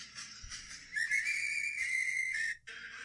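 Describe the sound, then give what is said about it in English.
A clear, high whistled melody of an old Civil War song in a movie, holding long sustained notes with slight pitch shifts over a soft, busy background, then breaking off briefly near the end. “So that is a old fucking Civil War song.”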